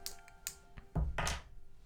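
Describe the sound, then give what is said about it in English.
A ten-sided die rolls across a table: a few light ticks and taps, then two louder, heavier thunks as it tumbles and settles, landing on a 1. No one speaks. “Will you roll a d10 for me”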